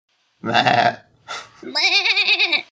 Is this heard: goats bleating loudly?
yes